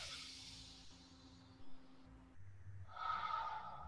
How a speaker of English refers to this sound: But what you can do, you can become very inspired by taking in the breath. Moving the energy up and then breathing in.